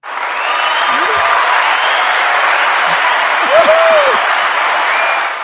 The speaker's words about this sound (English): Can you give yourself a round of applause? I know you got one in there somewhere.